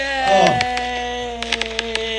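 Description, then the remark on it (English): A fireworks sound effect: a brief whistling swoop, then a quick string of sharp crackling pops, all over a steady humming tone. No one speaks. “Fireworks for days on that.”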